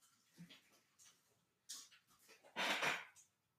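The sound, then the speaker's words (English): A dog whimpers and huffs in a few short, breathy bursts, the last one longer and louder, with quiet gaps between and no one talking. “Stop. My dog, man, my dogs. Stop.”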